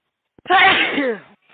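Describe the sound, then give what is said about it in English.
A single loud sneeze with a sharp intake and a voiced, falling burst lasting about a second, heard on its own with no talking. “Bless you.”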